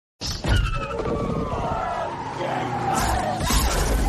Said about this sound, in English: So what has just happened is the driver has slid out and he has crashed the car into a loader of some sort with like a forklift. And the tines were up and one has gone through him and it has killed the driver.